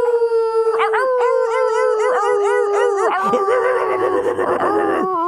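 A dog howls in a long, wavering cry with repeated yipping pulses rising and falling in pitch, loud and continuous, ending in a ragged, breaking wail.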